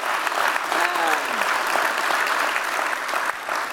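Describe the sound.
A crowd applauds steadily, a dense wash of clapping that holds at an even level throughout, with a brief voice or cheer rising through it near the start.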